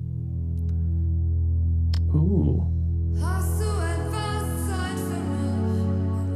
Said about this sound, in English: I'll go ahead and play a little snippet of I believe the original version, the German version of …